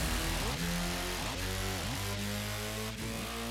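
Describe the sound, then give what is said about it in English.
Loud engines rev over and over, their pitch climbing and dropping in repeated surges about once a second, several motors overlapping in a steady roar with no voices. “Ladies and gentlemen, start your engines.”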